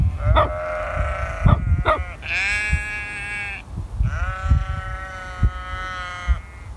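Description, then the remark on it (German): Several sheep standing beside a hut bleat, with a couple of short calls followed by two long, wavering bleats overlapping one another, over a low rumble of outdoor background noise, while a shepherd's dog jumps around them. No one speaks. “Er ist Schäfer und sein Hund springt glücklich um die Schafe herum.”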